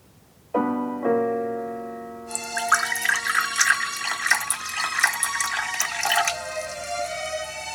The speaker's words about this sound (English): Here I am, pouring myself a cup of coffee beside the Christmas tree in the living room of my student home in Ottawa